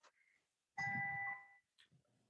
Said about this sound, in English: More tranquil sounds from the wind chimes